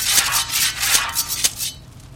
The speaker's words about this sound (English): Like the rustling of steel leaves, blades spring forth from the hands and extremities of the robotic construct.